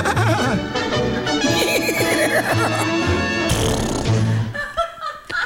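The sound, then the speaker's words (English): A horse whinnies loudly, a long wavering neigh that rises and falls, with a busy musical backing underneath before it breaks off into a few short snorts. “Did you see the horse go by?”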